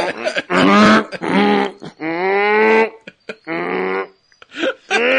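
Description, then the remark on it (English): A person imitates a hippo with a series of loud, drawn-out, throaty honks and grunting moans, each burst rising and falling in pitch, separated by short pauses. “So I'm going to ask, since we're talking about a hippo, can you do a hippo? Okay, I'm going to try it.”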